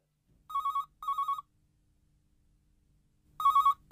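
A telephone rings in a warbling electronic double-burst pattern, pauses, then starts another double ring that cuts off at the end as an answering machine picks up. The ringing is clear, with no voices.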